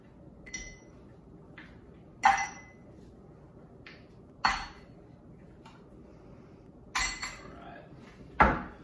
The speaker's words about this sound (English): And then go ahead and add some ice cubes.